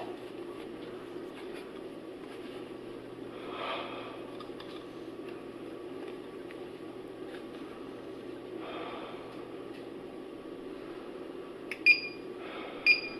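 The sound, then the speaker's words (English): Two short, high electronic alarm beeps from a monitor whose reading has reached 1,900 sound near the end, about a second apart, clear and fairly loud above a steady rumbling background with a couple of soft whooshing swells earlier. “Okay, so it's already starting to go off, the alarm. It's already at 1,900.”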